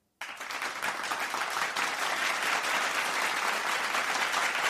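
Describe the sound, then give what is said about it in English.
A crowd bursts into sustained applause, many hands clapping in a dense, steady wash of sound that starts abruptly and holds at full volume throughout. “Okay, the crowd just gave you an applause.”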